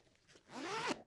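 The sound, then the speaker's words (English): A pencil case is unzipped in one quick, continuous pull, the zipper's rasp rising and ending with a sharp stop. It is fairly loud, with no talking. “That was my pencil case.”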